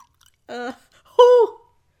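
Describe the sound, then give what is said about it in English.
Old Fourth Distillery Handcrafted Gin, a Southern spirit made in Atlanta, Georgia, glugs out of the bottle into a glass in two short pours, each a hollow, resonant gurgle, with quiet gaps around them and no talking. “Well, pour it.”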